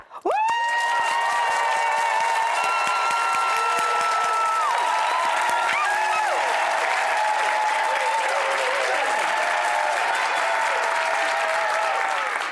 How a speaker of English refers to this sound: So when I get a big hand raise, our crowd is gonna have the best cheer.